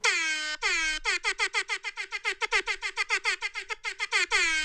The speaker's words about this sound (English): Gotta see the difference the pop filter makes on the air horn effect.